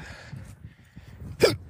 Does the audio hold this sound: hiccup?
yes